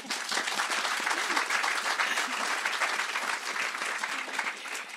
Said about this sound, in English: Let's clap for Sana.